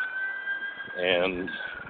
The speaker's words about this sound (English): Is that ambulance coming to your house? That's what happens when you live 100 yards away from a hospital.